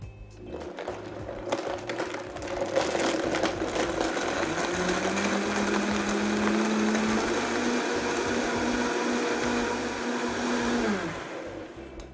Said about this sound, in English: And when this blends up, it turns a beautiful blush color.